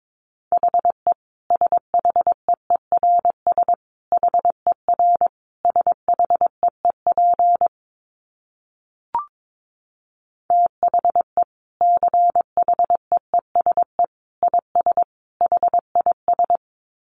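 Morse code at about 22 words per minute: a steady mid-pitched tone keyed on and off in quick dots and dashes, with one short pause and a faint click partway through. No voices.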